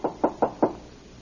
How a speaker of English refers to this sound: Here's Miss Canyon's cabin. Oh, door's open. I'd better knock anyway.